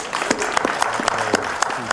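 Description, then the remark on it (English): Steady audience applause welcoming Mark Thompson to speak at an evening event at the University of the District of Columbia, many hands clapping in a dense, continuous patter with sharp individual claps standing out, sustained at an even moderate loudness with no talk. “Would you please give a warm welcome to Mark Thompson?”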